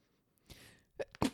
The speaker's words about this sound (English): Bless you. I was about to say I have to sneeze, and then I ran out of time, and then I couldn't stop it. I half stopped it.